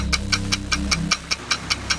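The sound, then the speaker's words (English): A game show countdown clock, set to 25 seconds after the first question is read, ticks quickly and steadily, about ten crisp, bright clicks in two seconds, with a low sustained hum underneath during the first half. “25 seconds on the clock after I finish reading the first question.”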